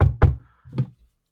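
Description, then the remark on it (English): Three solid knocks on a door, two in quick succession followed by a short pause and a third, clear with no voices. “a knock comes to your door.”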